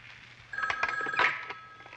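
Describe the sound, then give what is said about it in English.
A telephone listed as Dr. Somnambula's office in Gotham City rings once, a sustained bright electronic trill starting suddenly and lasting over a second, moderately loud with faint background hum. “Don't be alarmed. That phone is listed as my office.”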